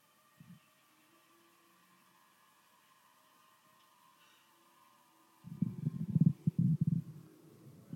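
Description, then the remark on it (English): Low, gurgling stomach rumbles: a brief blip early on, then after a quiet stretch a louder, churning burst of bubbly growls lasting a few seconds over a faint steady hum. “Somebody sounds like they got indigestion.”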